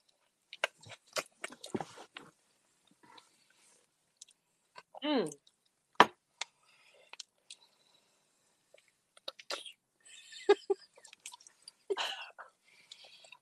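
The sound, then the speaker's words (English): Wet mouth sounds and clicks, then a quick wavering slurp of a shot of Fireball cinnamon whisky, followed by scattered sputtering, gasping bursts as the person chokes on it. “I tried to make a slurping noise and I almost killed myself.”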